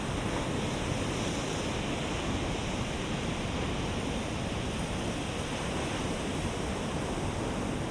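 Continuous ocean surf washes in a steady, even roar with no distinct individual crashes, constant throughout, with no voices present.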